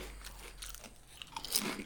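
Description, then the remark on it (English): Crisp crunching of gluten-free mesquite BBQ potato chips with 40% less fat being chewed, a few brittle bites breaking up into wetter mastication over a couple of seconds, with no talking. “He's chewing it, yeah?”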